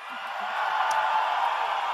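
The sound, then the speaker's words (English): An audience cheers and roars in a steady, dense wash of noise that holds at the same loudness for about two seconds, with a brief higher whoop partway through, cheering a speaker's remark about taking out Trump. “And listen to the lemmings in the audience cheering that.”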